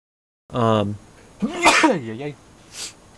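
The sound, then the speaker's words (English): A single loud sneeze: a drawn-in voiced breath, then a sharp, hissy burst that trails off into a breathy sound, with a soft sniff shortly after. “Bless you.”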